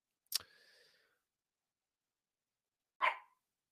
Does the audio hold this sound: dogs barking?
yes